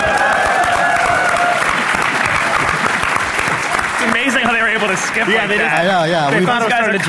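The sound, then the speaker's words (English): Loud, dense applause from an audience at PAX on August 31, 2014, for a performer who has just played, fills the whole clip, with clapping and cheering throughout; after a few seconds voices rise over it, shouting and calling out with wavering pitch. “Well, let's hear it for him.”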